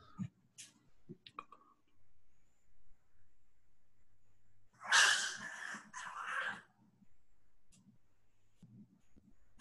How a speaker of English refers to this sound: You just keep barking the whole time. Those are your small dogs? Yeah.